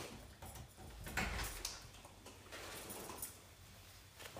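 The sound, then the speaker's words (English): A door is opened with a low thump and scraping rattle, followed by faint clicks and handling noises over a steady background hiss. “I'm just going to open the window. Actually, I'm going to open this door.”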